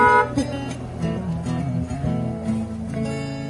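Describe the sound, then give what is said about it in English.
Several car horns honk together at a drive-in worship service in overlapping, sustained blasts, a loud, steady chorus of tones that carries on for a few seconds with brief dips and restarts. “get Anna a hand. Or a honk.”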